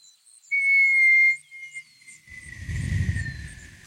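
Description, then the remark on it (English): A single loud, high whistle holds steady for nearly a second, then trails off into a fainter, slowly falling tone as a low rumbling boom swells underneath. No one speaks. “You get near the edge of the city and you hear like a whistle.”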